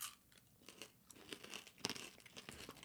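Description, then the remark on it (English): Loud crunching as someone chews a crunchy peanut butter snack with a honeycomb-like texture, with a rapid series of irregular, crackly bites and no talking. “Very crunchy.”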